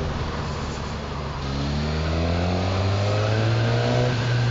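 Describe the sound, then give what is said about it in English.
A Katana motorcycle engine revs up steadily while filtering through traffic, its pitch climbing over several seconds beneath a constant rush of road and wind noise, fairly loud, with no talking. “Well, I feel confident enough to filter through the traffic, which is always a sign.”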